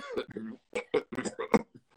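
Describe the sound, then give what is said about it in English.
A person voices their cat's retching, vomit-like cough, which the cat has had with the flu for the last week: a string of short, harsh, throaty hacks and gulps in an uneven rhythm, fairly loud. “my cat has had the flu the last week, and she's been going. You wake up and she's been coughing like a human, like a little old lady or something, like, but no, like okay.”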